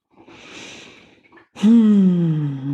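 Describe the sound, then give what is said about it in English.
One long, airy breath drawn in, followed by a louder, voiced sighing exhale that gradually fades, clear with no talking, during a guided mindful breathing exercise. “Breathing in Hipley and breathing out tar.”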